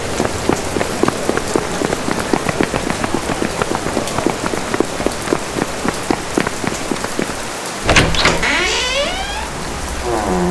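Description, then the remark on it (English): Heavy rain pelts a hard surface near the Church of San Zechariah as night approaches, in a dense, steady patter of close drops, with no voices; near the end a louder whooshing, rising mechanical whine cuts in over the downpour. “It's really starting to rain now.”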